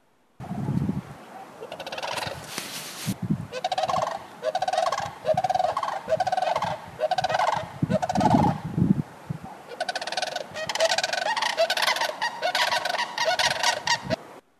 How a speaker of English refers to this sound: If you recognize that bird, that's a crane. At the ranch, the summer home area, we've had over the last probably 10 years, a pair of cranes that comes back to the ranch every year.